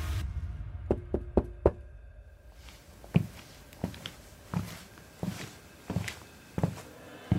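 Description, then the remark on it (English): Knocking on a motel room door at 3 a.m.: a quick cluster of four raps, a pause, then a slower, steady series of single knocks, distinct with no voices. “2 weeks later, on December 17th, at 3 a.m., someone knocked on the motel room door.”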